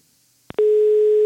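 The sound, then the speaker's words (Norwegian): After silence and a couple of faint clicks, a telephone ringing tone sounds on the line, one steady, loud, unbroken pitch that holds to the end with no voices. “Det ringer du!”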